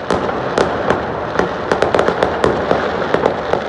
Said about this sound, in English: We were just talking off air about the fireworks that were going off in Vancouver and a lot of other municipalities. Mm-hmm. Here's what it sounded like on the weekend here. This is in Vancouver last night.